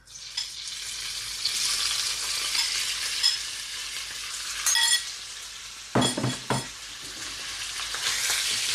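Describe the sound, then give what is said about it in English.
Bite-sized chicken pieces sizzle in hot, shimmering oil in a pan with a steady crackle throughout, broken briefly by a few sharp clatters of a utensil moving them around the pan; no one speaks. “So I'm going to pop my chicken into the pan. You should hear a nice sizzle.”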